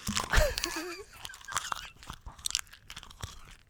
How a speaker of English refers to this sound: He's not joking. He is actually eating paper, guys. I'm grossed out by this.